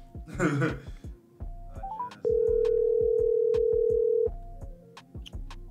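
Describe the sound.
A voice briefly, a few quick rising beeps, then the loud, steady ringing tone of an outgoing phone call to a friend holds for about two seconds over a faint, regular ticking beat in the background.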